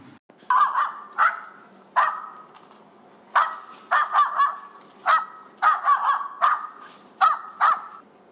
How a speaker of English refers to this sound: Now, the fear bark will be high-pitched, and it will come in a long series, similar to the excitement barking, but it will be easier to tell its fear just based on listening to the dog's voice. It sounds a little something like this.